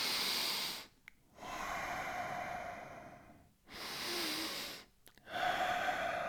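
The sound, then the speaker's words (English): Slow, deep breaths drawn in and let out, each a long airy hiss separated by brief pauses, about three full breaths with no talking. “Or even listen to yourself breathe.”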